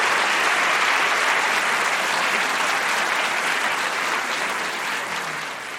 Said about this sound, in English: and yet they did it in a respectful way, and I have to really give them a round of applause for the way they did that.